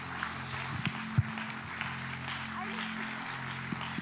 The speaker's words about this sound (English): Clap your hands one more time unto the Lord.